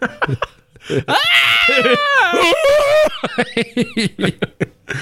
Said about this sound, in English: See, it's a responsibility to find the right moment for sound effects. You can't just throw a sound effect in screaming goat sound.